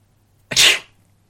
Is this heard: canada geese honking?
no